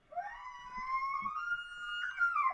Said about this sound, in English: There we go. Almost. And that was it. This is what an elk sounds like.